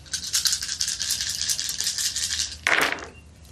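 Dice rattle steadily in a shaker or cupped hands for a couple of seconds, a bright clattering, then spill out in a short burst of clicks as they land during a tabletop game session, coming up a 6, three 2s, a 3 and a 1. No one speaks.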